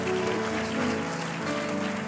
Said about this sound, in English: Would you give God a good hand clap of praise? Come on, I think you can do better than that.